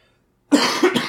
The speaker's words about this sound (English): One more cough in your eardrums before I go.